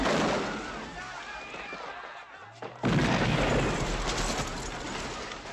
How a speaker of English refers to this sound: So we're just going to listen to this action scene where they just rip apart a mall. Fun. I mean, there's a bomb, there's guns, there's a car chase that happens here in a second.